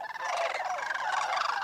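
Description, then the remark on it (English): A loud, rolling chorus of rattling sandhill crane calls, several overlapping and continuous throughout, resonant, with no voices present. “Cranes now breed in several parts of New England, especially Massachusetts.”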